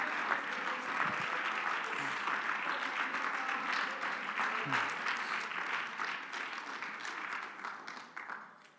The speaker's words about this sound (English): Come on, let's truly clap our hands to the Lord right now. Come on, clap your hands and just praise Him for a moment.